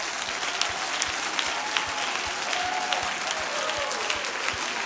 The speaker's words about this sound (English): Those hands you have raised, let's clap them unto the Lord with everything we've got.